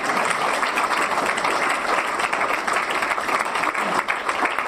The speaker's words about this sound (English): Give Bob a round of applause.